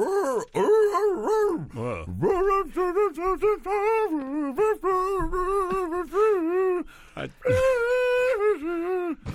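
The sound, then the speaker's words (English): A person imitates a seal, letting out a rapid string of loud, nasal, wavering barks and honks with a few brief pauses, sounding strained and moan-like. “weird barking sounds actually kind of sounded more like a seal than...”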